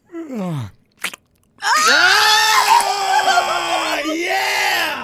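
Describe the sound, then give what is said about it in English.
A voice imitates a waking-up yawn: a short falling groan, a quick throaty catch, then a long, strained, loud moaning tone that holds steady for several seconds. “It's when someone wakes up and they. I don't want to say clear your throat”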